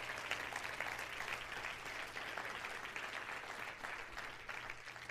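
A crowd claps to the Lord in a morning worship service, a steady, dense, continuous wash of many hands with no clear beat, fairly loud throughout, with a low steady hum underneath and no voices.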